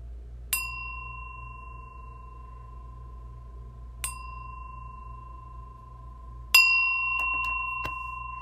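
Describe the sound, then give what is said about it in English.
A meditation bell is struck three times at unhurried intervals to begin a guided meditation, each strike a clear ringing tone that lingers and fades slowly over a low, steady background hum. No one speaks. “I'm ready to lead a meditation at this time. So, I'm going to ring the bell and I'm going to instruct you in the healing breath practice, and then we will slide into another practice.”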